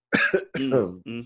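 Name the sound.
coughing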